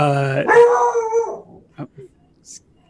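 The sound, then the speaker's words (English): A dog outside the house lets out a loud, drawn-out howl that slides downward over about a second, followed by a few short, softer yips and sniffs. “There's a dog outside. He has to defend the house.”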